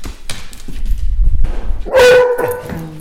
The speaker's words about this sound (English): Okay, so I would say one of the most defining things about home for me is the sound of dogs. I grew up with dogs as a child, and so there were always dog sounds in the house.